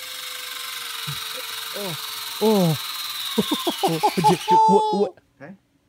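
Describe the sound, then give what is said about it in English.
A power drill whirs steadily as a doctor drills a needle into his own bone, its high motor whine running for about five seconds beneath a few voices before it suddenly stops. “Just drill that in there.”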